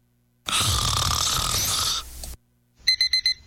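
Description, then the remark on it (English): A long, loud snoring breath fills the first two seconds, then after a short pause a timer alarm sounds four rapid, high electronic beeps, clear, waking someone from a nap. “I'm setting another timer for 30 minutes.”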